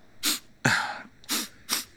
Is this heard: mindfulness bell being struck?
no